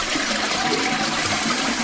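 A loud, steady rush of water from a toilet flush fills the whole moment, a continuous whooshing gush with no voices over it.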